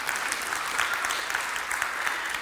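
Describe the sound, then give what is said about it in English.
Steady applause from an audience, a dense patter of many hands clapping at once with a bright, even texture and no voices standing out. “But then, if you want to clap, go ahead, my sister.”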